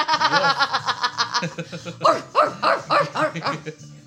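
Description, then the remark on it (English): A person mimics a dog barking with a run of quick, voiced woofs, then several louder, drawn-out bark-like yelps mixed with chuckling. “Say, and they just go, woof.”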